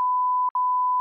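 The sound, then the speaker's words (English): A loud, steady high-pitched censor beep, bleeping out a person's name, lasts about a second, broken by one brief gap near the middle, with no voice audible beneath it. “What will you say his name? We're gonna beep it out of the podcast.”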